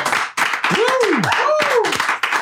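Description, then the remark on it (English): Applause in a studio: dense, steady clapping from several people for a couple of seconds, with rising and falling whoops from voices cheering over it. “I've never gotten an applause at the beginning of a podcast.”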